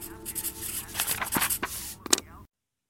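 Quick scratchy strokes of a pencil on paper, a short burst of brisk scraping marks, ending with a couple of sharper scratches before cutting off.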